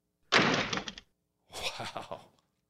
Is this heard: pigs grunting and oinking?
no